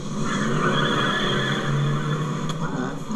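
A truck's engine strains loudly while its tires screech and skid continuously as the truck is pulled backwards, harsh for a few seconds, with a brief sharp crack near the end.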